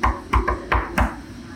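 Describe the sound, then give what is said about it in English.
Five loud, heavy knocks on a door with a deep thud, uneven in rhythm: a single knock, a quick pair, then two more spaced apart, as someone tries to serve a restraining order. No voices. “When you hear knocking on the door, don't answer the door.”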